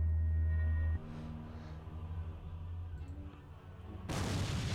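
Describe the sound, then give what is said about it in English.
A low droning rumble gives way near the end to a sudden, loud explosion that bursts in with a wide roar and keeps rumbling. No one speaks. “Huge explosion here at the Browser Stadium.”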